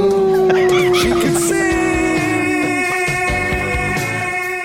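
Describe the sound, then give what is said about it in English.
A female dog howls loudly in long, sustained, wavering tones that sound almost like singing, with steady musical notes continuing underneath. “She isn't too good at preserving the art, but his dog can sing.”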